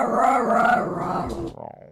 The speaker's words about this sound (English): She doesn't bark. She just growls like that, like at my roommate's dog.